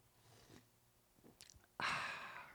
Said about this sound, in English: I got my coffee right here. Let me take a sip of this.